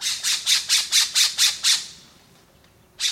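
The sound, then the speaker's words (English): A rapid series of eight harsh, raspy squawks from an island scrub jay, one of the rarest songbirds in the U.S., in a steady rhythm, followed by a brief pause and one more loud rasping call. “the striking cobalt feathers of the island scrub jay, one of the rarest songbirds in the U.S.”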